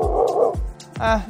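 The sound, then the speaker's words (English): A dog barks, a few short harmonic woofs with yippy, slightly whiny edges, loud and clear with no talking over them. “What was that bark for?”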